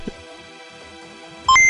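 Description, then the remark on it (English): After a near-silent stretch, a sudden burst of loud electronic computer beeps and boops rings out, quick stepped tones at different pitches stacked together, bright at the very end, as a calculating computer works out a game's score. “Calculating computer activated. Computers. Beeps. Space. Boops.”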